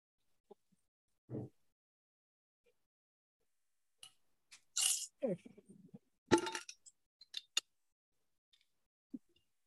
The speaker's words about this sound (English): You sneezing? What's going on?